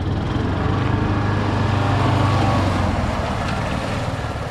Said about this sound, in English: convoy heads into the park. In addition to the spray trucks, the entourage also includes a three-wheeled, all-terrain vehicle. Its driver wears a hooded bodysuit and a gas mask.